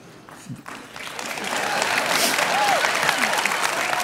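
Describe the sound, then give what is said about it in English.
An audience at a talk on dating rules breaks into applause after the point that guys should ask girls on dates, starting thin and swelling within about a second into steady, dense clapping that holds at a strong level to the end, with a few faint voices mixed in. “The guys are like, why are they clapping?”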